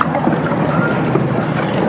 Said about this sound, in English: Make sure that inside hand is on the fishtail, outside hand near the blade. And on three, you're going to reach in that water and pull back. Ready, set, go.